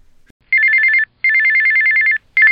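A telephone bell rings in loud, rapid trilling bursts: one short ring, a longer one, then the start of another, with brief silent gaps between and no voices.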